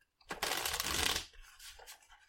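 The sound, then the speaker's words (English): A deck of playing cards is shuffled once, a dense, crisp riffle of flicking cards lasting about a second, followed by softer rustling and handling of the cards. “Do you want me to shuffle these first or no?”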